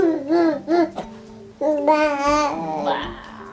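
A 9-month-old baby boy playing in his high chair babbles in short, sing-song bursts, with high, wavering vocal sounds rising and falling, then a longer stretched-out squeal-like vocalization, while dinner is being prepared; no adult talk is present.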